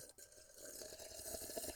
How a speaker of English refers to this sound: How do you drink... That's noisy. I thought they might like some slurping.